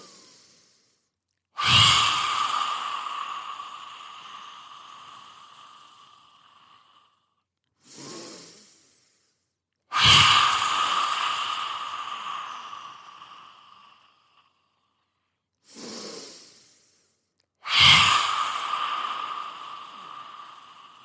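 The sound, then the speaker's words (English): Three long, forceful open-mouthed exhales with the tongue stuck out as far as it will go, each breathy and slowly fading over several seconds, with shorter, quieter inhales through the nose between them. Loud, no talking. “So we're taking in a deep breath through the nose, and then keep that breath going for as long as you can with the tongue as far out as it will go.”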